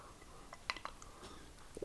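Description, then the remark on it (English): A quiet slurp from a drink, taken to clear a croaky voice: a few brief wet sipping and mouth noises clustered near the middle, then a soft swallow-like sound at the end, with no talking. “I'm just going to take a little slurp and try and get rid of this croak.”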